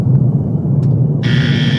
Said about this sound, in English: Oh. Pink. I didn't know there was a pink noise. There is a pink noise.